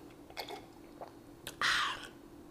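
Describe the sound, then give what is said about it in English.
A sip of pineapple juice: a few small wet mouth clicks, then one louder, breathy slurp lasting about half a second, with no one talking. “our body drink for this week is some pineapple juice. So as you know, we have sake or sip together or whatever.”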